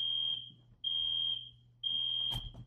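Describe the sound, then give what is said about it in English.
A fire alarm beeps three times in a steady rhythm, each shrill, high-pitched tone lasting about half a second, loud, with a low hum and a brief knock in the background. “It's a fire alarm.”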